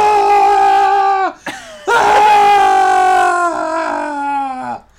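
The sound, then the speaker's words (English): A man bellows a long, loud war-cry yell, breaking off briefly before launching into a second sustained roar that slowly trails away, a voiced imitation of a wrestler's entrance scream. “the Braun yell should be the whole thing. And it should just be like a yell all the way down the ramp”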